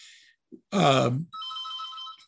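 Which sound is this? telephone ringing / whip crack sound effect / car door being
telephone ringing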